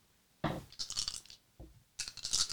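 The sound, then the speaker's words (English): Four six-sided dice for a sneak attack damage roll clatter and tumble across a hard table in two bursts, a rattling roll followed by a brief pause and then a second bright skittering roll, with no talking. “All the dice.”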